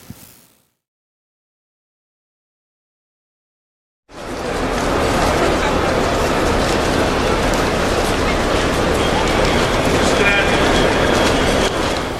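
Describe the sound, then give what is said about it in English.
After a short blip and a few seconds of silence, a loud train rumbles through a station, a dense steady roar with rattling wheels continuing to the end, with faint voices mixed in. “I think next step is taxi to the train station.”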